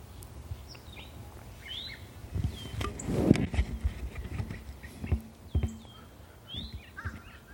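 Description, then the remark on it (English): Birds chirp in short, scattered bursts outdoors, fairly faint against a low ambient rumble, with occasional thuds and clopping sounds. No one speaks. “Other than the sounds all around you, the birds, the people.”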